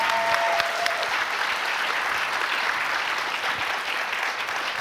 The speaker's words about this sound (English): So, yeah, round of applause for the documentary.